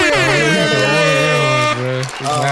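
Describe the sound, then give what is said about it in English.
A loud, brassy air horn sound effect blares in one long sustained blast as a special guest is introduced, wavering slightly at first, then holding a steady pitch before a brief break and a short final burst. “I need the air hum.”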